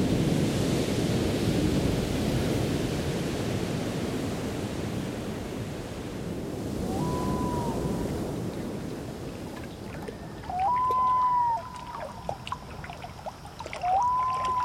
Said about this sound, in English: Waves crashing on Venice Beach in Los Angeles.